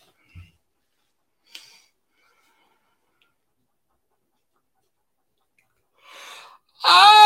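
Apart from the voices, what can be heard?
yawn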